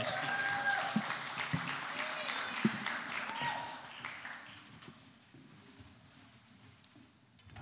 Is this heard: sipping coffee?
no